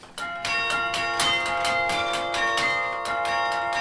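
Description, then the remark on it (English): Carillon bells at UM ring out a tune about bells, struck notes following one another at a steady pace, their bright overlapping tones sustaining and blending into a loud, resonant wash with no voices. “and then one that's about bells, just to wind it all up”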